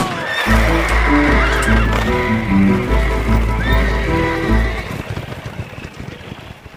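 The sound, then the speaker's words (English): A loud horse whinny rings out over a steady, dense rumble of hoofbeats, which thin into a faster, fading clatter in the last couple of seconds as the marshal's horse, spooked by a gunshot, gallops off. “Being as how this here is a farewell party, I'm gonna shoot off my gun, spook the marshal's horse, and he'll gallop out of West Buzzard's Bottom real fast.”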